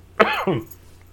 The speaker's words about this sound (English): sorry for coughing in the mic